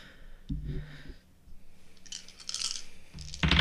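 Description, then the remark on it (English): A fistful of d20 dice clatters and rattles across a hard surface in a couple of bursts, with a louder tumble at the end over a low background hum. No one speaks. “Have so many dice for exactly this situation. Gotta have a fistful of d20s.”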